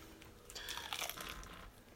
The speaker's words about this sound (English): Just the spicy regular chicken tenders. Spicy tender. All right, let me take a bite out of this. See how it is.